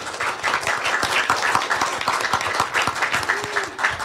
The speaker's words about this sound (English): I want to ask one quick question of you by a sound of clapping or applause. How many of you receive your Braille form or your e-form digitally through email?